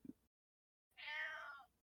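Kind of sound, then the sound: animal, cat meowing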